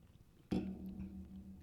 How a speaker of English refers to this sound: Okay. Everybody can hear you drinking and swallowing, so whatever. Yeah, I'll leave it. It's cool.